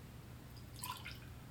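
Liquid being poured in a short, soft burst of splashing and trickling, fairly quiet, over a steady low background hum.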